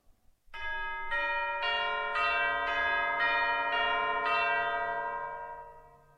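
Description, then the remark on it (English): Orchestral chimes ring out a slow melodic phrase of a Viennese musical clock theme, roughly seven struck notes about half a second apart, each tone sustaining and blending into the next before fading away. No voices. “First of all, obviously enough, chimes.”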